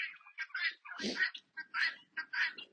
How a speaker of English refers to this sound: The birds are all a twitter, as I'm sure you can tell in the background.